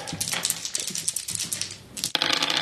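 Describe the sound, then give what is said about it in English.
Dice are rolled for a resist damage check, rattling and clattering continuously in a quick flurry of small hard clicks, fairly loud, with a brief pause before the tumbling resumes near the end. “Give me another resist damage check.”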